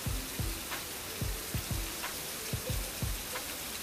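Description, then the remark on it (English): Heavy rain pours down in a steady, dense hiss, with a series of dull low thumps of drops striking a surface every half second or so. No one speaks. “It's raining harder.”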